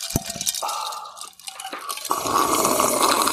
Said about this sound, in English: The drinks are poured.